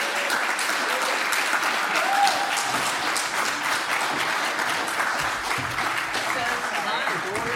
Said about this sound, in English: Oh, yeah! Please give a round of applause to both of our guests, Julie Plec and Kevin Williamson.